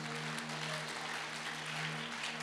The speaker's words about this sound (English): So we must rejoice and be glad in it. Let's clap for Jesus again.